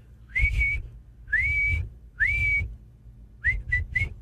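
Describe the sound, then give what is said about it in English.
A shrill whistle sounds three drawn-out blasts followed by three quick short toots, fairly loud, with a low breathy rumble beneath each blast and no talking. “Okay, but where's this is your bad whistle?”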